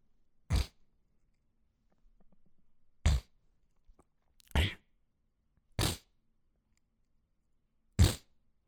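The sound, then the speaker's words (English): A person imitates the snotty sniffing and throat-hawking of a man in the row behind at a 3.5-hour play: five short, harsh, wet bursts spaced irregularly across about eight seconds, with near silence between them. “He doesn't have a tissue, so he's hawking it back.”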